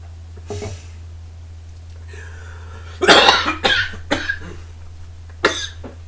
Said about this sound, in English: All right, we are back after that coughing fit from me choking on coffee.